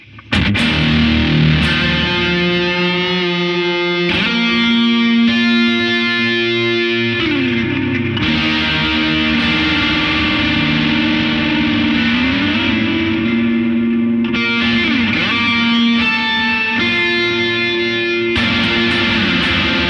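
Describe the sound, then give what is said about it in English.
Heavily overdriven electric guitar played through three stacked effects pedals with the Halo turned on, sustained distorted chords with a thick, buzzing tone and a hint of echo, loud and continuous for the whole stretch with no voices. “Let's see how the three effects pedals handle it.”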